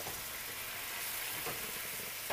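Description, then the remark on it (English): Chicken fries in a pan with wine added over a gas flame, sizzling with a steady, bright crackling hiss, with a few louder pops breaking through near the end. “Look at the boil of the volcano Vesuvio.”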